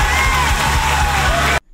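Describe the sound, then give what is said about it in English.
A large crowd cheers loudly and continuously, a dense roar of voices with scattered whoops and yells, then the sound cuts off abruptly. “So, like, they were still cheering. Like, nobody quieted down at all.”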